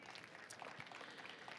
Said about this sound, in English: God has a way of making dreams come true. Can you give the Lord a clap offering?